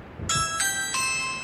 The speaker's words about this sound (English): And suddenly the doorbell rings. We've got one of those ring doorbells. They've got the distinctive sound that rings on your phone. This one.